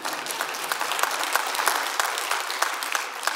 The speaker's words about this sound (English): Jesus is the Christ. And you and I, you go ahead and give him applause, that's fine too.